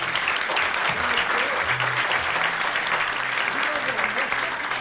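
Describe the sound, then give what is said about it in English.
An audience at a church service claps steadily throughout, a dense, even wash of many hands with no gaps, while murmured voices sit faintly underneath. “Give her another clap.”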